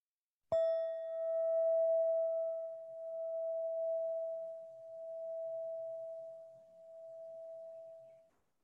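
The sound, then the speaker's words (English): A single meditation bell is struck once with a sharp onset, then a steady, pure tone rings on and slowly wavers in loudness as it sustains for about eight seconds, clear with no talking. “And when you're ready, close your eyes, I'll ring the bell, and we'll just listen.”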